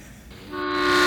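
A train horn sound effect blares in, starting softly and swelling into a loud, steady, sustained toot that is still sounding when the short clip ends.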